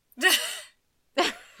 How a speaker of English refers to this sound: You can't yawn yet. I yawned already.